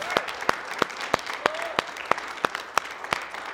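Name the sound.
audience applauding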